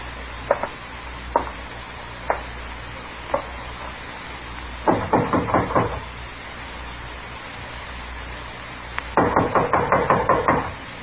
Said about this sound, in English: All right, knock on the door. Tell him you want to talk to him.